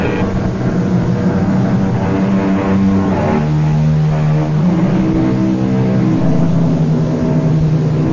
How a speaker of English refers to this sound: It is almost midnight. The highway is deserted. Off in the distance, we hear the keening of a finely tuned sports car. It grows louder as the car approaches.